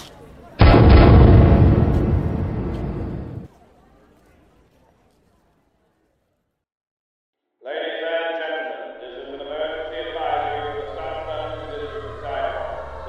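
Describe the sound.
A single heavy cannon boom rolls out, rumbling for about three seconds before cutting to silence; after a pause, a voice is heard over a low hum.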